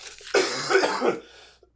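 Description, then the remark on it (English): A harsh, raspy cough from a person who has been sick bursts out, rough and sustained for about a second, then tails off before another cough begins right at the end. “Sorry, I've been sick. So that's professional. We don't have a cough button.”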